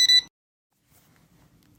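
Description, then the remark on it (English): A single short, bright electronic timer beep, from a timer used to count how many seconds children can stay underwater, then cuts off into near silence with only a faint low background murmur. “Right now, he's using his timer to count how many seconds each of the kids can stay underwater.”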